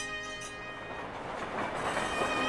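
A train at Waterloo Station, a passenger boarding, a steady mechanical hum with sustained tonal whine and a rumbling, hissing rush that grows slightly louder, with no voices.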